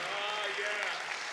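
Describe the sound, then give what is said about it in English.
An audience claps their hands to Jesus in the morning in a steady, dense wash of applause, with voices mingling underneath throughout the short burst. “Somebody clap your hands to Jesus this morning.”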